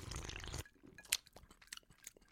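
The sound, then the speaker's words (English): A single sharp, bright clink of drinking glasses touching in a toast, after a brief burst of rustling noise, followed by faint scattered clicks and handling sounds. “Well, cheers, guys. Let's try this.”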